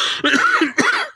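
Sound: coughing fit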